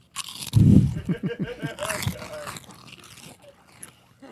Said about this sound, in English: I know that's going to be funnier at home because we're crunching in the microphone. Into the mic.